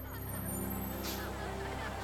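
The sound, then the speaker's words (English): A school bus engine idles with a steady low rumble throughout, and a short hiss of air brakes bursts out midway. “I can't drive this bus. Not anymore.”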